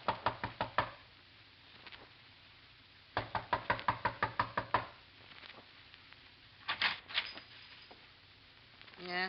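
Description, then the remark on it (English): Sharp knocks on the door of Joe Polan's home come in quick bursts: a rapid rap of about six at the start, a longer flurry of ten or so after a pause, then a couple more raps near the end. “A knock.”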